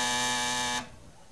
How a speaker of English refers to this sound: I will have to ask you to keep your grubby fingers off the buzzer until I finish asking the question, all right?